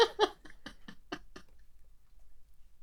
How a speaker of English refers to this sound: Chew the slipper. She is chewing the slipper. What is wrong with you? You're nearly 11 years old. You know better.